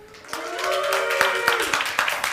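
A live audience at FMX bursts into steady applause with whoops and cheering voices rising over the clapping, loud and sustained for a couple of seconds, with sharp individual claps standing out.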